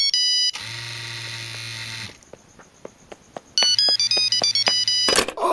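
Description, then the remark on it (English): An electronic telephone rings loudly: a long buzzy ring, a string of short beeps, then a second sustained ring that ends in a brief clatter. “Father, the clam is ringing.”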